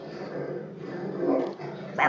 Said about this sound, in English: Our dog Minnie is protecting her.